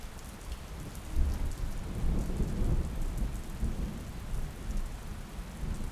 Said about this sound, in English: You can hear the rumbles of the thunder. And the rain, although it is heavy, is cleansing and calming.